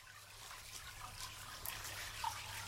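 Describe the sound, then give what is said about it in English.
Water from the Sacred Spring flows and trickles in a steady, continuous wash, heard while going down steps toward a museum; fairly soft, with a low hum underneath and no one speaking. “So we've just come from the Sacred Spring and now we're going down to the Lore Museum, and we can hear the sound of flowing water as we're going down the steps.”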